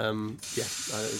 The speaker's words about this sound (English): They reach underneath the desk. Second goes, and you hear... And the door slides open.